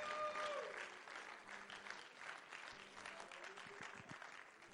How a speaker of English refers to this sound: And could the church say amen? Clap your hands to the Lord and give him thanks together.